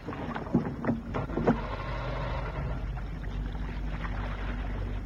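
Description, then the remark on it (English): Three quick, sputtering pulls of a boat's outboard motor starter cord, each catching briefly and dying out as the motor fails to start, followed by steady low rumbling background noise with no engine running. “I'll start the outboard motor.”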